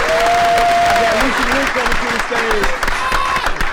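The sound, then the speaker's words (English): A crowd claps loudly and steadily as performers are brought to the stage, dense applause filling the whole clip, while a voice calls out over it with a few drawn-out shouts. “So everybody start clapping right now.”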